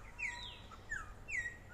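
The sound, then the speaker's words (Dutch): A bird calls three times with short, bright descending chirps spaced about half a second apart, heard faintly in the background over a low steady rumble at a hotel on Curaçao, with no one talking. “Zoals je net misschien hoorde op de achtergrond, die vogel.”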